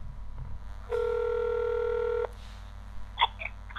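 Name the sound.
telephone being dialed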